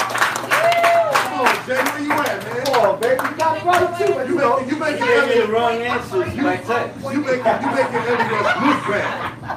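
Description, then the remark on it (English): A short burst of audience clapping mixed with chuckles and laughter before the last question of a trivia game, loudest in the first few seconds, while several people keep talking over it throughout. “Can we get a clap for this one?”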